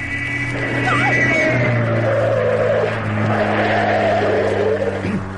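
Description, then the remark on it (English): A car engine roars as tires squeal and screech, the car swerving and skidding on a narrow road in Bavaria for several seconds before coming to a halt about 10 yards short of a wall. No voices are heard. “Another 10 yards and we'd have been into that wall.”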